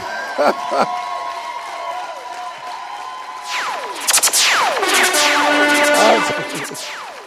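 An audience applauds and cheers, with scattered whoops and shrill whistles; the crowd noise swells louder about halfway through and stays dense to the end.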